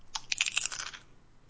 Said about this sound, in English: Your crunchy racism betrays you. I am eating in your general direction.